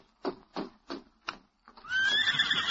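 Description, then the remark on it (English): A horse lets out a loud neigh, a long shrill whinny with a rising, quavering pitch, right after four evenly spaced clopping hoofbeats, as it is ridden to a telegraph office and its rider calms it. “Then he rode to the telegraph office. Oh, easy. Steady, big fella.”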